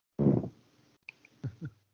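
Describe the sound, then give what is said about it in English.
A chair lets out a low, rubbery groan, followed a moment later by a few short creaks and squeaks as it shifts, with no talking. “It was the chair.”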